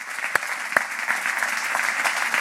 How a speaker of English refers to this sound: Okay. Well, let's give another round of applause and thank them for today.